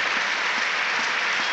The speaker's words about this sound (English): The applause is for Louis Sahar, who's off on a stretcher.